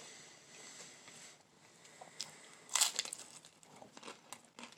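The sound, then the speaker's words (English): Crunching from someone eating and crunching as loud as they can, a run of crisp, crackly bites with one sharp, loud crunch in the middle and smaller crackles scattered around it. No talking. “I'm trying to crunch as loud as I can.”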